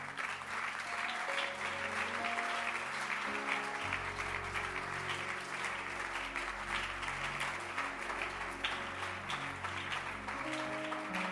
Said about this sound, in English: Clap your hands.